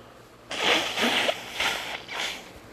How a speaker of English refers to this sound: Sorry about that. I had to blow my nose.